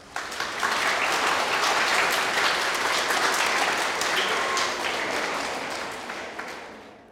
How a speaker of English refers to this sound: Clap for yourselves.